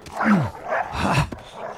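Dogs bark and yelp in a rapid, overlapping flurry, fairly loud, with a short sharp snap near the end and no one talking.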